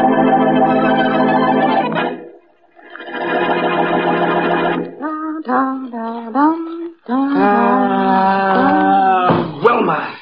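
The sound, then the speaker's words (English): A voice hums a wandering, sliding tune, sustained notes gliding up and down with brief pauses between phrases, fairly loud with no other sounds around it. “Well, you cut out that humming.”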